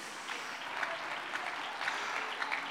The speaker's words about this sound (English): Oh, come on right now. Let's give the Lord a good hand clap today.